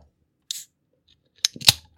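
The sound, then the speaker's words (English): A beer can cracks open: a short hiss, then a pair of sharp metallic snaps close together, fairly loud against otherwise quiet surroundings, with no talking. “Got to get the crack one. In there. Old can cracker.”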